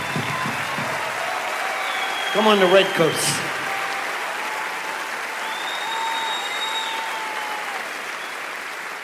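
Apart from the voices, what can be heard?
audience applause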